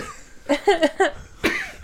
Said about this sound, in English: Cough, cough, hack, hack, wheeze, wheeze. Did you swallow my stones? No. I'm okay. Yeah. Just went down the wrong way.